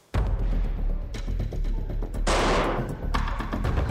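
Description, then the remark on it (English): A rapid series of loud gunshots, as Coach Thomas is shot five times at point blank range in the weight room of Parkersburg High; sharp repeated cracks over a dense, rumbling background, with a harsh hissing burst partway through. No one speaks. “When he arrived, he entered the weight room and shot Coach Thomas five times, point blank.”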